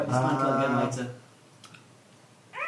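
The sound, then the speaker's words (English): A pencil is fiddled with, giving two or three quick, light clicks in a brief pause between bits of talking. “You've nicked my pencil again. Put it back. I finished fiddling with it for now.”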